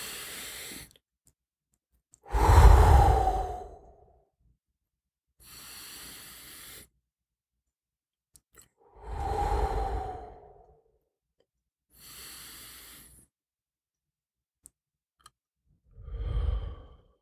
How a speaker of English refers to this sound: When this is happening, when you're feeling overwhelmed, immediately, I'm talking about right now, you take 3 deep breaths like this.